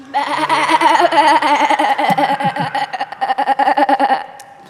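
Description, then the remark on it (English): An audience loudly imitates sheep on cue during a story about Mary and Joseph in the stable, a chorus of wavering bleats overlapping for several seconds, with a bit of laughter mixed in before it trails off. “This means that every time I say, 'But all Mary and Joseph heard was,' you'll make your animal noise.”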